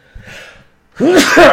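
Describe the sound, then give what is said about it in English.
A single loud sneeze: a soft, breathy inhale builds for a moment, then an explosive voiced burst that lasts about half a second before cutting off. “Pardon me. I can't recommend this kid with a straight face. He makes me sneeze.”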